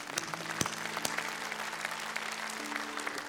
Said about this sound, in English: Yes, we could clap.